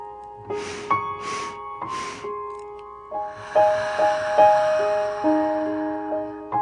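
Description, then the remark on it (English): A breathing exercise: three quick, evenly spaced nasal sniffs with the mouth closed are followed by a long, airy exhaled sigh, over soft sustained background music. “Now sniff in three times with your mouth closed and exhale in a sigh.”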